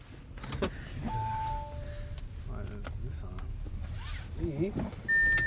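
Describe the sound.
Inside a car, an electronic warning chime sounds and a recorded voice alert, advising to shift into park before leaving the vehicle or it can roll away, speaks over a steady low engine hum, with mechanical whirring and another tone near the end.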